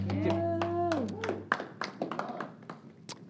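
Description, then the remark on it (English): Scattered audience applause, with irregular sharp hand claps rather than a dense roar. A sustained low tone with a gliding pitched sound runs under the first second before fading. “So give yourselves another round of applause, take your seat, and say hello to someone.”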